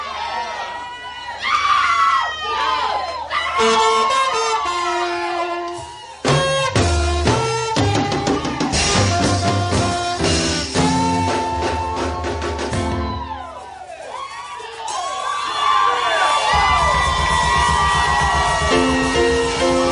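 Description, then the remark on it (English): A crowd of many voices shouts and cheers loudly and continuously, with excited yells and whoops rising over one another in a dense, energetic roar that swells and dips briefly before surging again. “He's telling us to say the reason why we are shouting for joy is because God is excited at your prosperity.”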